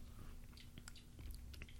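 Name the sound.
sipping beer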